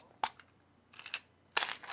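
A six-sided die (D6) is rolled, landing on five: a single sharp click, then a short patter of light rattling taps, and finally a louder burst of clattering as it tumbles and settles. No voices.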